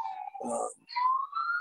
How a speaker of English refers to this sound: Hold on. I'll wait till the sirens calm down. That's terrifying just to hear a siren.